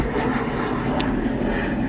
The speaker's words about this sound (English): So, with that being said, let's let that airplane get its moment.